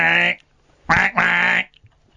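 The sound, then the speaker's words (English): A slide whistle blows three loud, nasal quack-like notes: a short one, a pause, then two longer, drawn-out notes run together, with a faint click afterward. “not a duck whistle, which is what I originally typed into YouTube”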